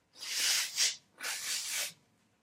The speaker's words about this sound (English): I blew my nose, right? And now I have this toilet paper with snot in it.